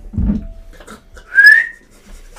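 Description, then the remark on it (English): A person whistles once, a short, bright rising whistle calling a dog named Owen, following a dull low thump and faint rustling. No one speaks. “I whistle for Owen.”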